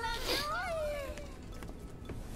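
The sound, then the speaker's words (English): A single drawn-out meow from a space cat in a video game, high and bright, sliding downward in pitch over about a second against a steady low background hum. “Space cat still can't speak anything but cat.”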